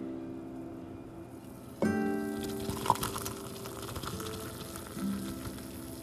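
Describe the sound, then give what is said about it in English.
Hot water boiled in a teapot poured into a cup of Nescafe instant coffee: after a quiet moment, a steady splashing stream starts abruptly and continues with a gurgling, ringing tone. No one speaks. “That, my friends, is the sound of heaven being poured into a delicious cup of Nescafe.”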